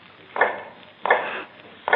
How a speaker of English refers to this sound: Now in the North Tower, cell number 105 is heard all day, a low, hammering sound.